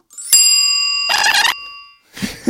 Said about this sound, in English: A double bell there.